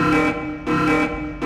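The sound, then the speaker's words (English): A loud warehouse security alarm buzzes in harsh, rasping pulses, sounding three times in quick, steady succession as something happens outside, with no voices present. “The security alarm. Something's going on outside.”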